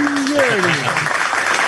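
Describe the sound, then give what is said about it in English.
The live audience of the sports show Across the Park claps in a dense, steady wash of applause that fills the whole clip, while a voice speaks briefly over it at the start. “Of course, the live audience. Yes. I had to find out where they were, and then they can clap when I can see them.”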